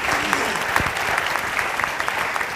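A church audience applauds steadily during a morning service, welcoming the pastor's wife, many overlapping hand claps forming a dense, even wash of sound that holds at a constant level throughout with no voices standing out.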